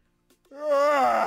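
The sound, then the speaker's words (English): A person lets out a loud, drawn-out yawn that swells into a yelling moan, a yawn yell, one long voiced cry with no other sounds around it. “You know, people yawn like that.”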